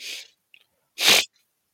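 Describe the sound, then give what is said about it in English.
A sharp inhaled breath leads into a single loud, explosive sneeze, followed by a brief faint sniff; no one speaks. “I have a slight sniffle.”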